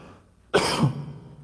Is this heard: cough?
yes